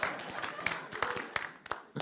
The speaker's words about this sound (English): I'm not sure I've ever gotten a welcome quite like that with people standing and clapping. So you're welcome to continue if you want to, and you know.